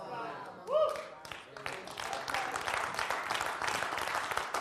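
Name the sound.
audience clapping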